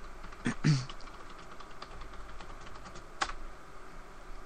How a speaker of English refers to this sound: Anyway, while he's typing in chat and being a douche